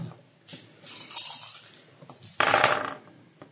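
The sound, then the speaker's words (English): Many dice clatter and tumble across a table in a rattling rush, building to a louder burst of hard clicks near the end before settling. Fairly loud, with no voices. “Well, you must have a pair with that many dice.”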